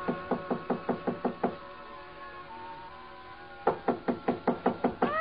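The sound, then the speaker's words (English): Two loud bursts of rapid knocking on a hotel suite door on the 9th floor, each about seven quick raps, separated by a pause of a couple of seconds. No voices. “Break in? It would have taken a battering ram. So I tried knocking.”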